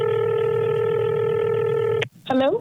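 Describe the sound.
A loud, steady electronic telephone tone from a touch-tone keypad, dialed by hosts of radio station Magic 105.3 to call a listener's sister, holds for about two seconds, then cuts off abruptly, followed by a brief gliding, voice-like sound.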